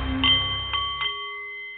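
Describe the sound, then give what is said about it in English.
A Nepalese metal meditation singing bowl rings with a clear, sustained shimmering tone, struck a few times in quick succession, its overtones lingering and slowly fading with no voices present. “The Nepalese Meditation Bowl is chiming, and that means it is time for The Art of the CEO”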